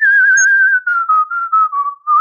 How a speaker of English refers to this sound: But you can make the noise with your lips. I can whistle.